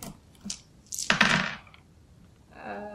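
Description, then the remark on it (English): Dice clatter across a hard tabletop in a quick burst of sharp, rattling clicks, loudest in the middle, before settling; a voice starts speaking just afterward. “Where did the dice go?”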